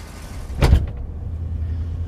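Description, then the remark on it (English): A 1970 Cadillac Coupe de Ville saloon car, a big American car, is chauffeur-driven along with a steady low engine rumble, broken early on by a single brief, louder thump or whoosh. No one speaks. “A 1970 Cadillac Coupe de Ville.”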